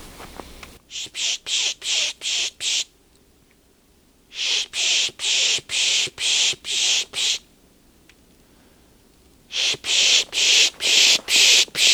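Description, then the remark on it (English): A birder pishing on Isthmus Bay Road near Swan Lake Lane and Forty Hills Road, trying to bring over a chickadee: loud, hissy bursts fired in three quick runs of five or six, separated by short pauses, with no talking. “So, I'm going to try a spish and bring it over.”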